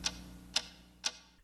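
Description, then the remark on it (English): Three sharp, evenly spaced ticks, about half a second apart, like a clock ticking, heard alone over a faint low hum. “What is that mysterious ticking noise?”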